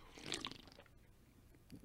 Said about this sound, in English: I'm going to have a sip quick.